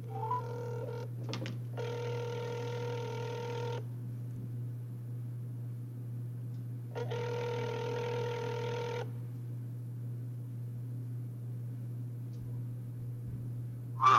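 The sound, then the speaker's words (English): A telephone rings twice for an incoming call from a caller, each electronic ring lasting about two seconds with a long pause between, over a steady low hum. Nobody speaks. “So we are going to take a nice phone call from a caller.”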